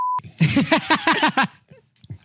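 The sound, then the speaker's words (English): A short, steady censor-style beep sounds first, clear, then cuts off, followed by a few seconds of rhythmic vocal bursts from a person. “If not, put the quietest beep over that.”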